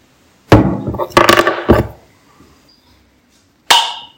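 Sharp metallic clicks and scrapes as a bottle cap is worked loose with a key, then after a pause a bright pop as it is levered off with a lighter.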